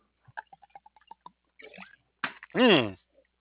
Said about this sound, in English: I really did have to wash some more down. I had to drink some more, everyone. You know, I had to get a drink of water here. My mouth is getting a little bit parched, so I had to go ahead and do that.